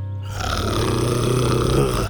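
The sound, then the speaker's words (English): A low, rumbling animal growl holds steadily for about two seconds, loud and gravelly, with a rough throaty texture that swells slightly toward the end before cutting off. “Buck growled louder.”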